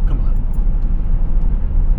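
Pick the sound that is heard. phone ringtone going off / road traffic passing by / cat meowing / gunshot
road traffic passing by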